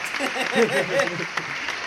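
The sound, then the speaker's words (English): A short burst of canned applause played from a clap button, a dense patter of clapping from a crowd, with an excited voice cheering over it in the middle before the clapping carries on alone. “Clap it up for that, man. Wait, where's the clap button?”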